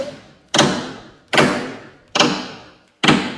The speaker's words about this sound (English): Play that sound one more time, that sound bite, that hammering in. I want you to play it again.